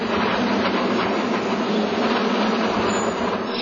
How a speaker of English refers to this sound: People know San Francisco, first thing they think about it, let's go ride a cable car.